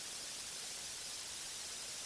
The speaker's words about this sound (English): You hear this static noise, almost like the static of a TV or something like that.